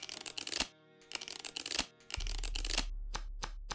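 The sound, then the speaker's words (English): A deck of playing cards being shuffled during a close-up magic card trick, after a picked card is put back in the deck, with quick crisp riffling bursts and sharp snaps repeating in uneven rhythm, while a steady low hum sets in partway through. “I'm going to shuffle it up.”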